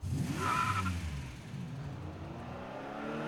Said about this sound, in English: Juan and Walker get into their cars and drive off.